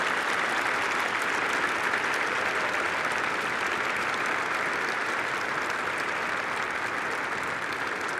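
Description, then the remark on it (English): Sustained applause from a large audience at a graduation ceremony, given in gratitude to the standing faculty and staff: a dense, steady wash of clapping that stays loud and even for the whole stretch, with no voices standing out. “Would you please now give them a round of applause to express your gratitude for all they have done to bless your lives?”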